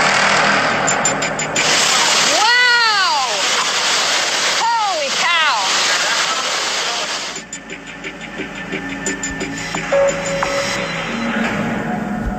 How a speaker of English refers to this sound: We're now inside the casino, and that is the wind whistling through the building. Do you hear how loud that is? How eerie is that? That is what a Category 4 eye wall sounds like inside a building.